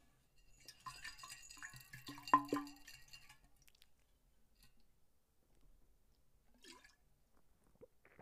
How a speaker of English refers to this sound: swallowing water